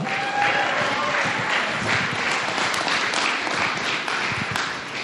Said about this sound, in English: On theme with tonight, give an arousing round of applause